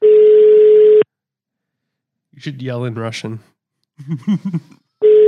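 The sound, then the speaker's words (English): A steady, mid-pitched telephone ringing tone sounds for about a second, then breaks off while people speak briefly. The same tone starts again at the end. “So let's give her a call and see what happens.”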